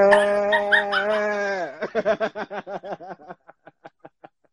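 A dog lets out a long, rich howl that breaks into a series of shorter yelping whimpers, growing softer and more spaced out until they trail off.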